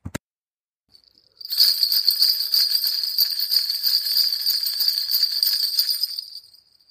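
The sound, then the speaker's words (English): Bright, high-pitched bells ring in a continuous shimmering cluster for about five seconds after a single soft tone, then fade out. No one speaks. “when you hear the bells, you can pause the podcast and come back after your free writing for the final prompt.”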